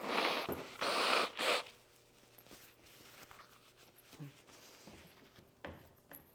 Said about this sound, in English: Hold on, I'm going to blow my nose. Don't listen. I know there's a microphone right near my nose.